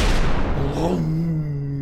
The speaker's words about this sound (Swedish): 4 torpeder väser fram i en hastighet på ungefär 40 knop. Och efter 90 sekunder från avfyrningen där så hör besättningen på Ventura en dånande explosion.